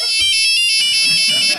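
A loud electronic cell phone ringtone plays a bright, repeating melodic pattern of high tones, steady, with faint low murmuring underneath.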